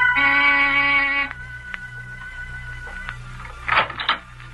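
A door buzzer at 15 Cantilever Walk, a big gray stone house, sounds one steady, harsh buzz for just over a second, then cuts off. A low hum follows, with a brief clatter near the end.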